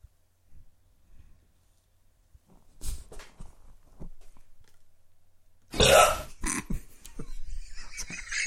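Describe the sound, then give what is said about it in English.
A loud, long burp from the TV show Cheers rings out after a few quieter throaty sounds, followed by faint murmuring voices in the background. “After Carla was finished burping her baby at the bar, whom else did she burp?”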